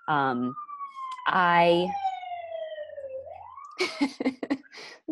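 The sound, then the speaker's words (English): An emergency vehicle siren wails loudly, its steady tone sliding down in pitch as it passes, with a couple of blaring horn-like bursts early on; voices start talking near the end. “Sirens.”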